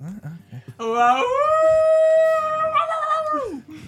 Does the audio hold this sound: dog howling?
yes